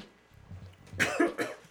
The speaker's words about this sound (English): you gonna cough on it? A little spittle on there. Spittle.